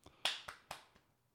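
A quick run of sharp hand claps, three loud crisp hits about a quarter second apart with softer taps before and after, each fading fast. No voices.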